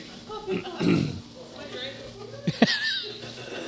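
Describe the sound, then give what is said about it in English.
Small puppy noises: a couple of snorting, grunt-like yips followed by a brief high-pitched whine, with faint background murmur throughout. “Puppy's still here. Bye, puppy.”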